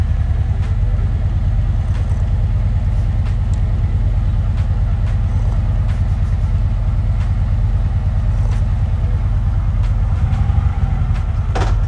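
A motorbike engine idles, a steady low rumble with a constant throb running throughout, loud and unbroken, with faint clicks and ticks scattered over it and no talking.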